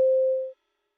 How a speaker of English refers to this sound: At the tone, the time will be 12 o'clock. Or not.